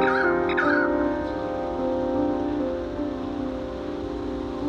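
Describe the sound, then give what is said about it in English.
A dense chorus of birds in Australia calls steadily, with a few sharp rising notes near the start over a constant hiss-like wash of background sound. No one speaks. “Also just record things that I thought were interesting. Birds in Australia.”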